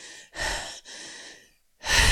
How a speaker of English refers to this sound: Your heavy breathing. Okay, go. And then the little wheeze that's in there.